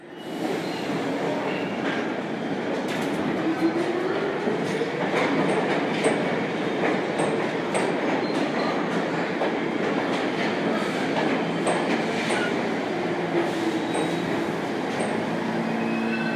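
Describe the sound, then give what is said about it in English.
A New York City subway train heading to the Greenwood stop rumbles steadily along the rails, heard from inside the car: a loud continuous roar with faint rhythmic clacking and brief metallic squeals, no voices. “So we are going to take the train over, and next stop will be Greenwood.”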